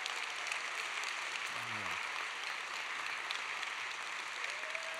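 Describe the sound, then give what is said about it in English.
A crowd applauds and cheers steadily for standing graduating seniors and their parents and grandparents, a dense, even wash of clapping with scattered cheers, and a brief voice-like call rising out of it partway through. “Parent or grandparent of graduating senior, standing up, look around, and y'all cheer these folks on right now.”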